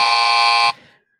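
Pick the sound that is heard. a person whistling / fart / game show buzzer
game show buzzer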